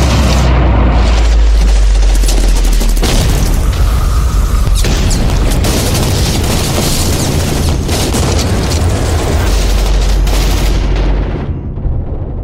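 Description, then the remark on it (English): Continuous battlefield din of explosions and gunfire as troops in contact take heavy fire, loud and dense throughout, with deep booming rumbles and crackling bursts layered over one another, easing slightly near the end. “Troops in contact, taking heavy fire, need backup now!”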